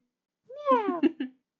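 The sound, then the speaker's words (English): A single drawn-out meow, sliding downward in pitch and breaking into a few short pulses at the end. It's fairly close and clear, with nothing else around it. “I felt it. Meow. Anyway. Meow.”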